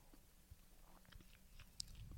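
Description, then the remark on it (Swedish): Someone takes a quiet sip of a drink, with soft wet mouth clicks and one sharper click near the end; no one talks. “Jag ska ta en klunk igen där, vänta.”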